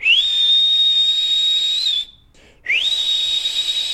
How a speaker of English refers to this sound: Well, that's it. Get out, you whistling maniac.